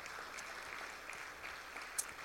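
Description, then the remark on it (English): A crowd claps steadily in a dense wash of hand claps, moderately loud and sustained for a couple of seconds, with a few sharper individual claps standing out, applauding a reserve champion Market Lamb exhibitor from the fair at a morning church service. “Let me give her a round of applause today.”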